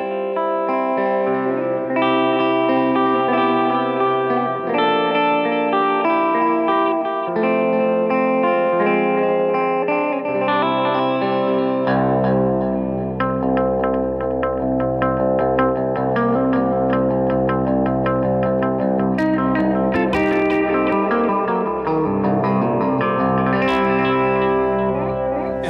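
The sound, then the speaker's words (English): A distorted electric guitar plays sustained, fuzzy chords and lines, with repeating delay echoes and a wash of amp reverb trailing behind each note; loud and continuous, no voices. “But, I mean, there's always going to be, like, a fuzz or overdrive and then delay, and then the reverb on the amp.”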